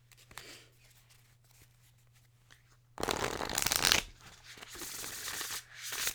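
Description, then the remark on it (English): A deck of oracle cards being shuffled: soft, quiet handling at first, then a loud burst of riffling cards, followed by a longer steady shuffling rustle. No voices. “Ooh, these shuffle like butter. Those shuffle beautifully.”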